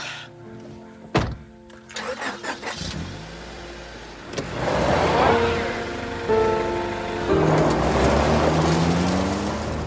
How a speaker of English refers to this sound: And she gets in her car and slams the door and she's driving away.